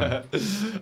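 A single harsh cough from choking on saliva bursts out after a strained throaty sound, trailing into a raspy, voiced clearing of the throat.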